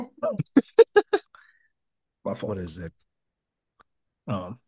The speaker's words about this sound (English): Sorry, I'm about to cough.